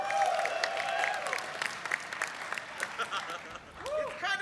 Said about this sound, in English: I said, round of applause.